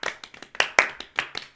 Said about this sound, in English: An audible shrug of the shoulders. I'm going to give it a slow clap.